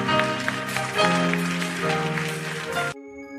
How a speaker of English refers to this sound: Stand on your feet. God bless you. Give God a hand and clap of praise all over this room.